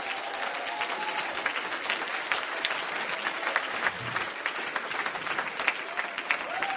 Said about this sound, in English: Or if you believe that, you ought to clap your hands unto the Lord.